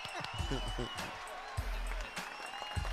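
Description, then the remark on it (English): The audience of the Steve Harvey Morning Show claps on Steve Harvey's request in a dense, continuous wash of applause, loud, with voices and low vocal tones mixed in underneath. “Get it together. Clap for me. So clap.”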